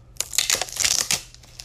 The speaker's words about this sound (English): Anyway, let me take the wrapper off this. I don't like having wrappers on my water bottles.